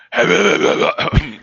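A loud, rough throat clearing before starting a sports segment: a sustained raspy, gravelly rumble followed by a brief pause and a short, forceful final push. No one speaks.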